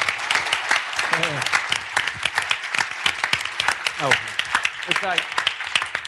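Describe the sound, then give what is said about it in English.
Steady, dense applause from a crowd for an SEO discussion panel at the end of a show, many hands clapping at once, loud and even, with a few voices calling out over it. “Give a fantastic applause to our fantastic panel.”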